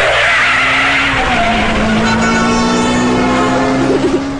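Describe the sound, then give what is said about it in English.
A car screeches in with tires skidding, a long rising-and-falling squeal held over steady engine noise, loud, ending in a brief wobble as it comes to a stop. “Oh, where's my car?”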